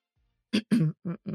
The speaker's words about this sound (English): I'm going straight to urgent care after this podcast. I'm not even kidding. Yeah, like I cannot shake this cough. Like it just keeps getting worse and worse.